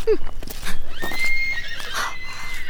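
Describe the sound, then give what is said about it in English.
A horse neighs in a long, wavering whinny that rises and falls over a couple of seconds, somewhere up ahead along a road, against a steady background. “Horses! Up ahead somewhere!”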